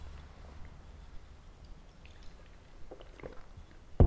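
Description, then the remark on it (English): Someone takes a quiet sip of a coffee drink: soft wet slurping and swallowing over low hum, no talking, ending with a brief louder bump. “Let me take a little sip of this coffee drink.”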